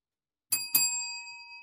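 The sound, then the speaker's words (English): A bell dings twice in quick succession, the second strike landing right after the first, then both tones ring out and slowly fade. It's bright and alone, with no talking. “Double ding.”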